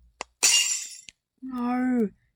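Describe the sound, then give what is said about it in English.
A boat is hit and breaks with a loud crash like shattering glass, a bright, noisy burst lasting about half a second with small clinks around it, followed by a drawn-out vocal cry. “My boat. It broke like glass.”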